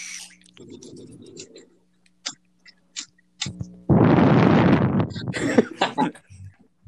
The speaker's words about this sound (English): Yeah, I farted. All right. That was the gust of winds coming out of my asshole. That was the sweet, sweet whistles of my ass cheeks.